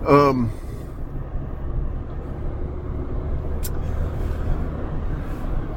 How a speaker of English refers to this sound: Hang on, I've got some squeeze driving to do between buses and weird-ass contractor guys. Okay.